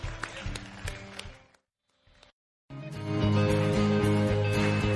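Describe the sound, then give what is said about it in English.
An audience at Baylife Church applauds God after a prayer, over music, with a dense crackle of clapping for about a second and a half. A brief silence follows, then a loud, sustained musical passage that carries through to the end. “Come on, let's give God a great big applause this morning.”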